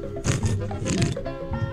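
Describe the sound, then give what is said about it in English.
Someone noisily slurps hot Cuban coffee in the morning: two loud, airy, wet sips in quick succession, followed by a shorter, softer slurp at the end. “My coffee, hold on, I gotta get another sip.”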